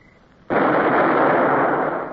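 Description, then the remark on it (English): A ship's cannon, fired by its gun crew, goes off once with a sudden, loud blast, followed by a long, rough roar that holds steady and only starts to fade near the end, the shots echoing off the hills. No voices are heard. “The gun crew sweated as they fired. The sound of the shots echoed off the hills.”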